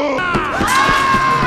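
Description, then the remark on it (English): A loud crowd screams and cheers, many high voices overlapping in a dense, sustained roar with rising shrieks, continuous throughout the brief moment. “They're screaming.”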